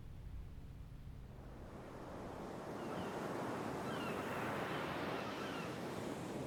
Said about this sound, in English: When anxious, uneasy, and bad thoughts come, I go to the sea, and the sea drowns them out with its wide sounds, cleanses me with its noise, and imposes a rhythm on everything in me that is bewildered and confused.